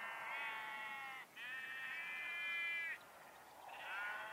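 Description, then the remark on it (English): A small flock of sheep bleat in three long, wavering calls, each a harmonic-rich, quavering baa lasting over a second, with brief pauses between. No speech, just the bleats over a low background hiss. “Oh, there's nothing sadder than seeing a little herd of sheep.”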